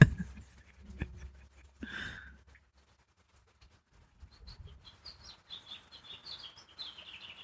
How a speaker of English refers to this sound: Can you hear all the birds in the background? That's how many birds we have around our yard.